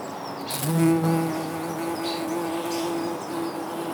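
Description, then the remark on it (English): Bees buzz steadily in late May 2018, a droning hum that swells louder in the first second as one passes, then settles into a continuous buzz with faint birds chirping in the background. “I'm doing this, letting you listen to the bees so that you can hear what the summer of 2018 was like.”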